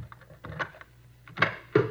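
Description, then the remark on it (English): A hotel room door in a cheap hotel in the Skid Row area being unlocked and opened: a series of faint mechanical clicks and rattles, then a few sharper clacks of the latch and handle, with no one speaking. “I'll get the door.”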